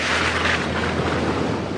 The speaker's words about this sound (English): Look, a storm, a terrible storm, crashing and flashing all night.